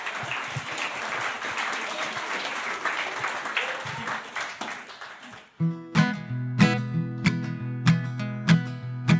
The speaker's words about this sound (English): Yeah, you guys can clap for him. That's okay.